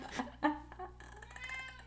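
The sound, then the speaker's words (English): A cat gives a couple of short, quick meows, followed by a faint, steady background hum with a muffled tonal sound. “Even my cat's getting excited.”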